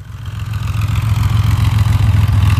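The engine of a backdated 1986 3.2 car with over 300,000 miles, owned by Auto Kennel, runs steadily: a deep throbbing rumble with a faint pulsing rhythm that swells slightly louder over a few seconds, with no voices.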